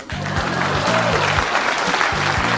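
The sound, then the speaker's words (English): A crowd applauds steadily for a few seconds, a dense, even patter of many hands clapping, with a low hum pulsing on and off underneath. “Please clap.”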